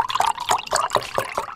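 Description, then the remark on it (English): Orange juice pours into a glass, a steady liquid stream broken by quick rhythmic glugs and gurgles, with no talking over it. “The OJ being poured.”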